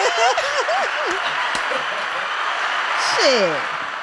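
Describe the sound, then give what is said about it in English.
A clapping sound effect: dense, steady applause for about four seconds, with brief whoops and voices rising over it near the start and again toward the end. “But can we drop a clues bomb for the if we don't have no clue round, well, let's get them a hand clap or something.”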